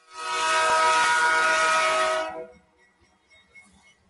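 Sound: train passing with horn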